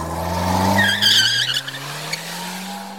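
Tires squeal in a high, wavering screech for about a second as a car skids, then the engine drones steadily on a low, rising note as the driver pulls away, fleeing the scene after hitting someone.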